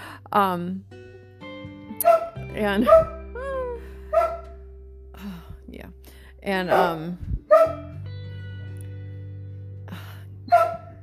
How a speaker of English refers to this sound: My God, the poor dog, he's going hoarse.